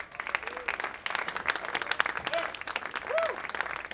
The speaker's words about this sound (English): give a big round of applause for …